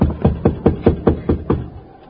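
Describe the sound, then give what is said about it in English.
Seven quick, evenly spaced, firm knocks on a wooden door, fading into a short quiet tail with no voices. “Go ahead, knock on the door, Jingle.”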